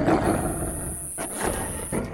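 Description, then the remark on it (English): A deep, rasping growl from a skinless monster dog rumbles steadily for about two seconds, swelling slightly in rough bursts, with a thin, steady high-pitched whine running above it and no voices. “Oh God, skinless dog!”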